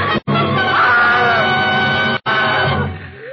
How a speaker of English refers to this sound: And then she threw up her hands and shrieked.